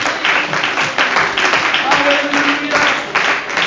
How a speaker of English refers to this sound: Oh, let's clap our hands one more time in here.